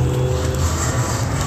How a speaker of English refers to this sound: Okay, traffic.